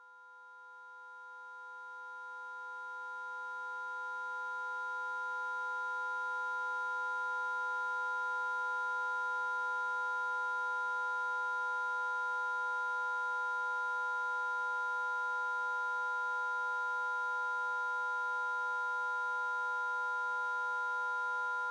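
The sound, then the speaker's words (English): A steady electronic tone of an ultrasonic animal repeller, from a sound artist's piece, performed live in London in 2017: several sustained, shrill pitches layered together, fading in over the first few seconds, then holding unchanged and unbroken with no voices. “But never fear, you've got an ultrasonic animal repeller.”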